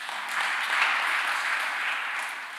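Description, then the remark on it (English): A crowd claps steadily for a couple of seconds as a hand clap to the Lord, a dense, even wash of many hands at moderate loudness with no voices over it. “A hand clap to the Lord.”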